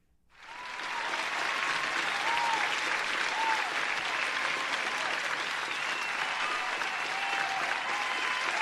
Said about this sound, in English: Applaud the president.